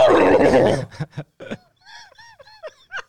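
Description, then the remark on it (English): A horse neighs: a loud, breathy blast followed by a series of shaky, high whinnying calls that rise and fall before trailing off, with no talking. “That's my xenophobic horse.”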